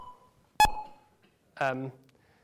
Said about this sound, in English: So what I'm going to do is I'm going to play two beeps, and these two beeps are going to be separated in time, and they'll show you where the start and end of a communication link would be.